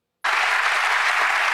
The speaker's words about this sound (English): Listen. Listen to the clapping. Listen to how it fills the room. And then listen to how it overlaps his voice and how they don't sound like they're in the same room.